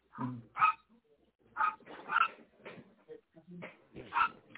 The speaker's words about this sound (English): Listen to the dog.